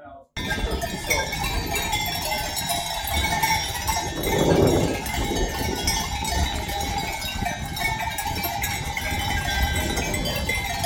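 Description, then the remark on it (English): Cowbells clink and clang steadily from a herd of cows on a farm, a dense, continuous jangle with a louder burst around the middle, heard outdoors over a low background rumble. “Oh, the cows, yeah, here. You definitely can hear the cows.”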